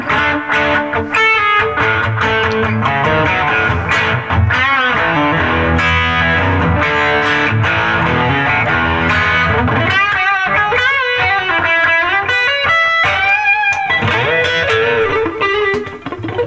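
An electric guitar with a humbucker pickup, played through a distortion pedal, plays loud, continuous chords and bending single-note lines, with a thick, gritty overdriven tone that sustains throughout and no talking.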